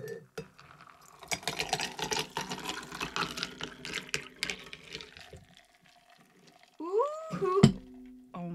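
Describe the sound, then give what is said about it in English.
A punch-like drink with grapefruit and cranberry is poured unstrained over ice in a glass, a crackly, clinking, splashing rush for several seconds that fades out, followed by a short, bright rising tone near the end. “Now I'm not gonna strain this because I need ice in my glass.”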